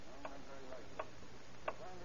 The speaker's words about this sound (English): Time, that precious element, relentlessly slipped by. Every tick of the clock bringing death closer and closer. Every second lost bringing destruction nearer.